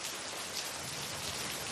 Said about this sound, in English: It's been a difficult few months, and the rain never stops, and I am so alone.